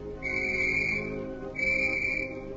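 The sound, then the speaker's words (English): A police whistle blown outside a flower shop gives two long, shrill blasts in quick succession, loud, with a low rumble of background noise underneath and no one speaking. “A minute later, B9 blew a police whistle outside the flower shop.”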